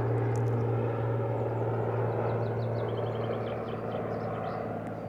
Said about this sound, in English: And so I want you to imagine that you are sitting in a meadow. And there's a plane flying overhead.